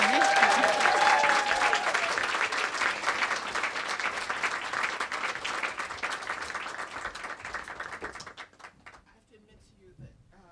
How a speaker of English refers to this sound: So everyone, please give a welcoming round of applause to Samantha Irby.